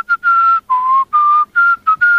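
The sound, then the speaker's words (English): Someone whistles a short, simple tune, a string of clear sustained notes separated by brief breaks, with slight pitch changes between phrases and no talking. “I don't think that was the recorder. I think that was you whistling.”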